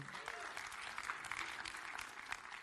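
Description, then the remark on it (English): An audience applauds two men called up to the stage, a steady, dense wash of many hands clapping at once, sustained throughout with no voices standing out. “You can give these good-looking men a round of applause.”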